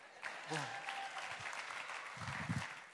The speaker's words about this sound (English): Okay, let's put our hands together for the most beautiful woman on the face of the earth. While she's coming, I'll take a question. Keep clapping, keep clapping, keep clapping, keep clapping.